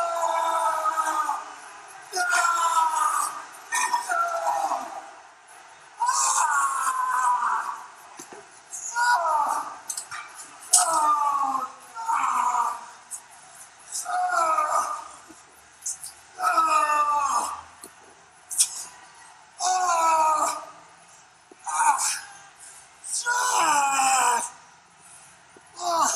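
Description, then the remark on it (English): The wrestler Undertaker cries out and groans in agony again and again after a tank is smashed on his hand against a chain link fence: loud, strained bursts of pained voice every second or two, over a steady noisy background. “and we hear Undertaker just screaming in agony like we've never heard him before, writhing in pain.”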